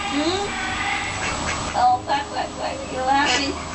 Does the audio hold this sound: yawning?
no